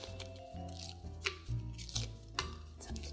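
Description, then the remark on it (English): Stale bread being torn apart by hand into chunks and put into a blender: several crackly tearing and rustling bursts at an irregular pace, with steady background music underneath. “I'm just breaking it into different chunks and putting it into my blender.”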